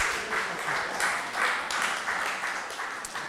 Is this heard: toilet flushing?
no